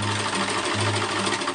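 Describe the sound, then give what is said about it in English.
A sewing machine runs steadily, a loud, continuous mechanical whir with a rapid, even stitching rhythm and a low motor hum underneath, with no voices. “To most, this is an ordinary sewing machine.”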